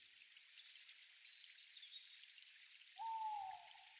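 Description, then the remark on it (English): Steady, soft rainfall patters throughout, then near the end a single mellow hoot from an owl perched high in the branches of a forest rises clearly above it, lasting under a second. “The easy hoot of an owl, perched high in the branches, reminds you of the wisdom held within these ancient sentinels of the forest.”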